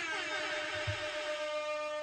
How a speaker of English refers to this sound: Soundboard, y'all. It's been a little too long since we had some dancehall air horns in this place. Let me do this really slowly. Air horns, y'all.